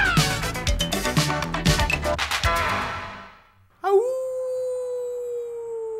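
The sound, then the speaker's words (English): In a trailer for the comedy Teen Wolf, busy, dramatic music gives way to a brief hush, then a loud, drawn-out werewolf howl rises sharply and holds steady, sounding alone until the end. “And tonight is his night to howl.”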